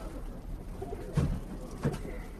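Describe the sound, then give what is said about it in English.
Two soft, low cooing calls from Iranian roller pigeons, one around the middle and another shortly after, against a quiet background rumble. “We got some rare ones. They have these Iranian rollers.”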